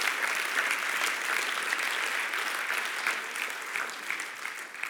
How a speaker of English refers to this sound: That is good preaching. Clap your hands this morning. That's good preaching.